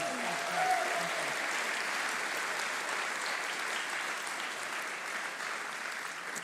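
A steady round of applause from a crowd welcoming a speaker, dense and even clapping that holds at a constant level for several seconds without voices breaking through.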